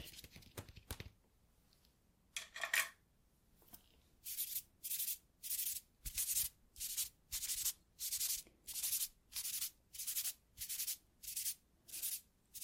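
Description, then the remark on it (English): A brush blending pencil lines in a drawing sweeps back and forth across paper in a steady rhythm of soft, hissy strokes, about a dozen in a row, after a few brief handling sounds at the start. “I'm just going to blend some of those lines out a moment. Let me just grab a brush.”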